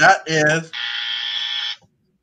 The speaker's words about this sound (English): That's a buzzer.